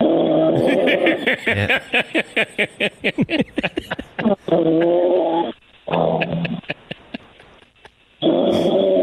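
A man snores loudly in his sleep, rough rattling snorts fluttering rapidly, then long growly drawn-out breaths separated by short pauses, with no talking.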